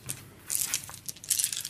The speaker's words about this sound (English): What I need someone to do, first of all, is to roll all of the dice in the table for me. Just pick them up and just roll them? Yeah, all of them.